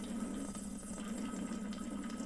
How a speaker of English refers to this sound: We added the slurp. The slurp is back.